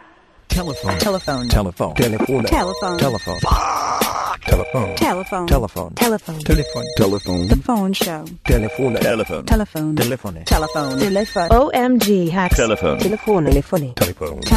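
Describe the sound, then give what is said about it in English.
A telephone rings repeatedly in bright, steady bursts, layered over a busy, loud mix of voices and tonal sounds that continues without pause throughout. “Telephone.”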